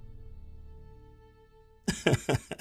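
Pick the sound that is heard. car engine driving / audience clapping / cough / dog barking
cough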